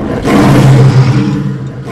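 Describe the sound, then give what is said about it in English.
The lion of the goddess Mahamaya roars once, a loud, deep, rumbling growl that bursts in abruptly and holds for about a second and a half before trailing off. No one speaks. “The roar of her lion reverberated among the three kingdoms.”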